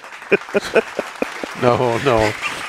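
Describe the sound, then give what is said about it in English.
About six sharp, evenly spaced hand claps ring out in a short burst, then a drawn-out voiced sound, like a cheer or sung note, follows without further clapping. “For that, I applaud you.”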